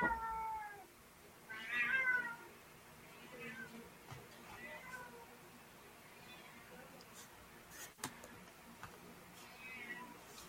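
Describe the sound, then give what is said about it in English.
A cat meows loudly twice in quick succession near the start, followed by several quieter, drawn-out mews spread over the next several seconds against a low background hum. “Contrary to popular opinion, my cats are not starving.”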